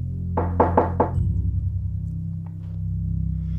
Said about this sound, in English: On that stormy night, as the snow was accumulating higher than anyone had ever seen, Farfalla heard a loud knock at the door.